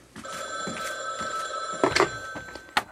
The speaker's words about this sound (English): Oh, why can't I ignore that phone?